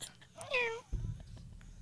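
A single drawn-out cat meow rises and falls, fairly loud, then gives way to a low, muffled rumble of background noise.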